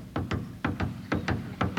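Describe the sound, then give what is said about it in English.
A conductor's footsteps walk steadily across a hard floor as he enters the orchestra pit of an opera house, about eight sharp steps falling in an uneven paired rhythm, moderately loud, with no voices. “Now I take you to the opera house, where you hear the conductor's footsteps when he enters the orchestra pit.”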